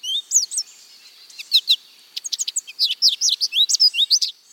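An American goldfinch sings a lively, rapid series of high, sweet twittering notes and chirps, clear, with no other sounds.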